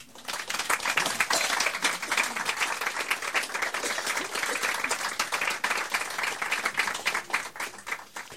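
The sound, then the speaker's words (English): An audience applauds after a poem is read, a dense wash of many hands clapping at fairly even loudness for several seconds, with no voices over it. “Other poets will say, oh no, save the applause till the end, you'll disrupt my flow.”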